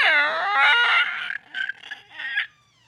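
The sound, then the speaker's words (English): A person imitates a pterodactyl with a loud, harsh, high-pitched screech. A long wavering cry is followed by a few shorter squawking bursts before it fades into quiet. “See, the creepy door was the better sound effect than your weird pterodactyl noise.”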